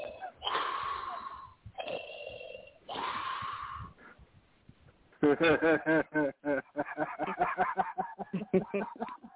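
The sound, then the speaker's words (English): A person imitates heavy, raspy wheezing breaths: three long, harsh, drawn-out inhales and exhales, followed by choppy bursts of voiced laughter. “Disney's new song, Star Wars, Darth Vader. That's how he sound.”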